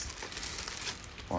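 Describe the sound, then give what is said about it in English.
Continuous crinkling and rustling of a toilet paper roll for just over a second, fairly steady with soft crackly texture, ending in a short louder burst. “Out of toilet paper.”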